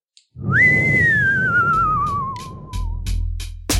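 Someone whistles a single long note, swooping up quickly and then gliding slowly downward over a low rumbling background, with sharp rhythmic taps joining toward the end.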